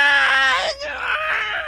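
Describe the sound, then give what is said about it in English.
A voice lets out a loud, strained, wailing scream, imitating a creature in pain as it is cut with a dagger, with a brief break before the cry rises again and trails on for nearly two seconds. “It screams out.”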